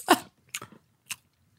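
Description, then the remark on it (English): Someone chewing cheese, with four or five short, wet mouth clicks and smacks spaced irregularly and separated by silence. No one talks. “I got a little cheese in my mouth.”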